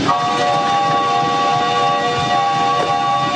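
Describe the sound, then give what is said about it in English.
An early steam-powered horseless wagon engine, as portrayed in the 1987 film Ford: The Man and the Machine, runs steadily, a continuous hissing, rumbling drone with sustained whistle-like tones layered on top, holding an even loudness throughout with no voices. “It's that engine making the wagon go.”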